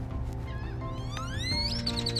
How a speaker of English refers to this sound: You hear the birds? The birds chapping?